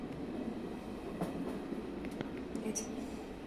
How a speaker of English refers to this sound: get on the train.